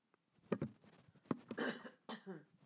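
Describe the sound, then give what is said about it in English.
A person with an allergy from a cat coughs several times in close succession, harsh, chesty bursts at irregular intervals with raspy throat noise between them, loud with no talking. “I'm sorry for all the coughing.”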